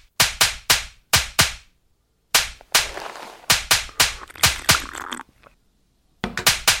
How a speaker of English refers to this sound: Let me get a clap real quick.